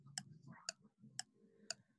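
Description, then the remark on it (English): A ticking clock timer counts off four crisp, evenly spaced ticks about half a second apart, loud, over a low, muffled background rumble. “would you start the clock, please? You'll know I'm starting the clock now.”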